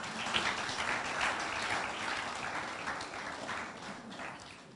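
crowd, audience clapping hands

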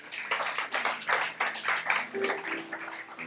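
crowd, round of applause

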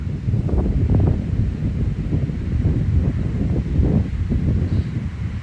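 nature, strong wind blowing outdoors

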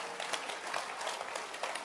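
crowd, audience clapping hands

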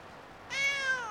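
animal, cat meowing

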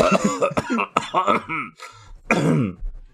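human body sound, coughing

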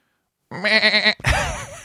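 animal, goat bleating

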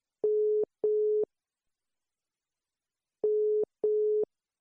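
signal or alarm, telephone call tone

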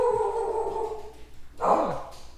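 animal, dog howling

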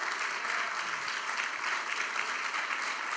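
crowd, audience applause

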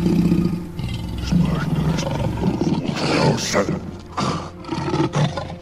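animal, big cat roaring

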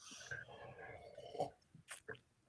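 food or drink, sipping and swallowing wine

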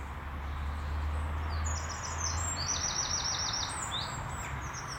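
bird, bird song

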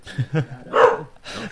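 animal, dog barking

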